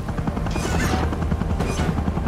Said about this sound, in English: And with that amazing timing, right after he chops off the Demogorgon's head, we hear the sound of a helicopter.